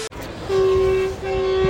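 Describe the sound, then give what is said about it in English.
The horn of a passenger Surfliner train in San Clemente sounds two sustained blasts, a longer steady tone followed by a second after a brief dip, loud and droning over a rumbling background. “As we hear the tones in the background of the San Clemente surf liner”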